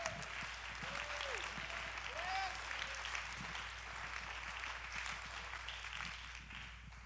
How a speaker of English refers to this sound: Come on, go ahead and clap your hands now.